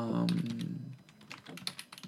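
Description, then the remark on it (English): Rapid clicking of keys on a computer keyboard, a steady run of light taps over about two seconds, with a brief low hum or voice murmur at the very start. “I don't like that I can hear typing.”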